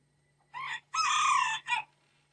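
A rooster crows once, loud, in a full cock-a-doodle-doo: a short opening note, a long sustained middle, and a brief clipped ending, with quiet before and after.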